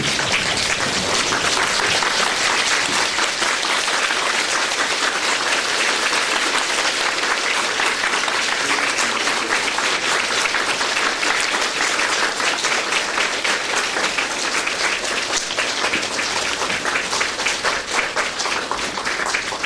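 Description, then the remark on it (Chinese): Warm, sustained applause from a large standing audience welcoming a Khenpo (Buddhist teacher) onto the lecture stage, a dense steady wash of many hands clapping at even loudness for the full twenty seconds, with no voices standing out. “我们慈悲的堪布现在已经在场内，让我们以热烈的掌声全体起立，我们以热烈的掌声欢迎堪布上讲台。”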